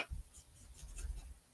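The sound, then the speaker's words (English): Quiet scratchy scribbling of a dried-out marker tracing over a design on parchment paper, a run of quick back-and-forth strokes with soft rubbing texture and no voices. “Oh my gosh, none of my markers work. They're all dead. This one doesn't work either.”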